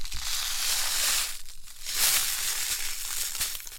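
Continuous gritty crunching and crackling of sea salt inside a letter envelope, with dense crisp high-pitched texture and a brief lull midway before resuming. No voices.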